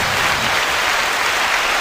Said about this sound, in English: The crowd's going wild.